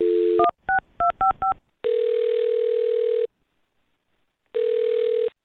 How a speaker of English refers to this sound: All right, well, I'll dial her phone number right now, get her on the phone, and see if we can find out what happened. Okay, here we go.